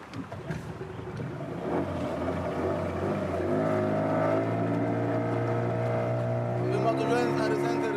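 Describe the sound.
The outboard motor of a small fishing boat about 18 feet long, used to smuggle migrants from Africa into the EU, drones steadily, its pitch rising as the boat gathers speed travelling along the coast, with some indistinct voices mixed in underneath.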